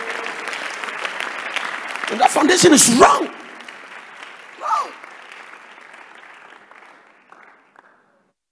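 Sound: audience clapping hands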